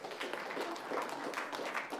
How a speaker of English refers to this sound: A round of applause for all those who